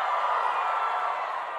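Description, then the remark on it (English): A crowd cheers in a steady, sustained roar of many voices, holding an even loudness for the whole moment with no single voice standing out. “That's the strongest crowd response I've gotten for one of the things a human being needs to live.”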